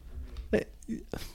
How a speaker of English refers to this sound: Our dog farted. Oh, no. See? Just now. Came right out real fast.